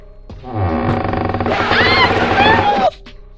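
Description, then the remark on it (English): A deep, rough growling roar swells up and holds for a couple of seconds, then shifts into higher wavering howl-like tones before cutting off abruptly, loud, like a wolf or big animal. “Now, I hear like a kind of a wolf or something in the background.”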